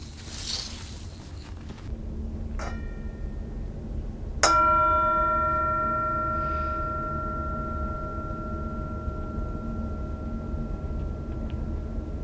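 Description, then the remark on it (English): A single meditation bell is struck once to invite presence and rings out clearly, its bright shimmering tone sustaining and slowly fading over several seconds in the quiet. “I will ring the bell again, invite us to presence,”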